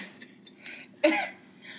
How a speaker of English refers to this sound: Excuse me while I cough.